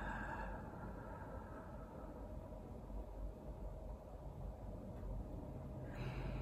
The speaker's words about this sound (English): Let's just take a nice deep breath. Right? And so let's slow it down. Nice, slow, deep breath in. Nice, slow, easy breath out.